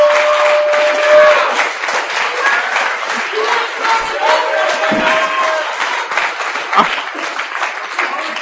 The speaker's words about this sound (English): You can at least fucking clap for that one.